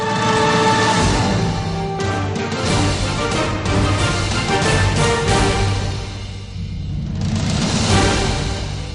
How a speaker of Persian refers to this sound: صدای بوق ماشین ها رفته رفته کم می شود.